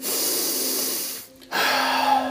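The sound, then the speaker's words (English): Deep, loud breathing during a guided meditation: one long airy inhale, a brief pause, then a steady breathy exhale, with no talking. “We start with breathing. You can begin with an inhale or an exhale, then alternate back and forth 3 times, slowly, deeply, purely, and lovely.”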